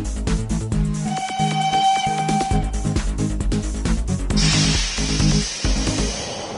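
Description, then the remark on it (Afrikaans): The whistle of the Tinie Trein, a toy steam train, sounds a steady, fairly loud tone over bouncy background music, then a burst of steamy hiss rushes in near the end. “Is dit dalk die Tinie Trein wat ek daar gewaar?”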